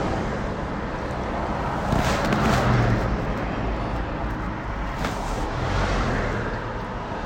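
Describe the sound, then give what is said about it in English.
Cars pass by on a road, heard from inside a car with the windows down: a steady rushing roar that swells loudly twice as vehicles go past, with a constant wind-like rumble underneath and no talking. “All these cars are passing by.”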